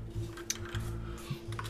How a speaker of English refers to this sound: Everybody's typing real fast.